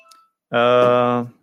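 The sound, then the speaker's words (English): A phone being turned down gives a single sustained electronic beep, fairly loud, lasting under a second, preceded by a faint short blip. “I apologize for those sounds, by the way. I forgot to turn down my phone. I'm going to do it now.”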